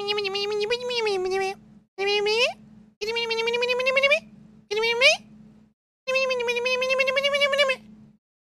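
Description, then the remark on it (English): A voice imitates squeaking mice, mocking how timid 'Minnesota mice' sound when they walk by, with five high, whiny squeals, several sliding upward in pitch, separated by short pauses and fairly loud throughout. “They're like Minnesota mice. Just little mice squeaking along.”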